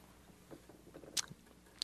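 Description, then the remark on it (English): Quiet gum chewing: soft, irregular mouth movements punctuated by two sharp, wet smacks or clicks, with no one speaking. “Are you chewing gum?”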